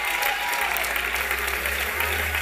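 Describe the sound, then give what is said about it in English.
A church audience in a sanctuary claps steadily and loudly in praise to God, a dense wash of many hands applauding at once with no pauses, filling the short stretch without any voices standing out. “I said, clap your hands, bless your God, and give your God a praise.”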